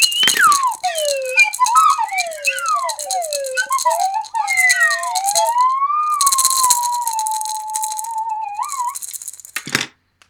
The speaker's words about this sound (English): Hey, what other instrument was that in the background? It's a maraca slide whistle combo. Oh, nice. That has such potential.